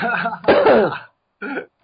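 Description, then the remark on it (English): A rough cough that sounds partly like throat clearing, in two quick bursts, followed after a short pause by a smaller cough, from a chest infection. “I can cough now”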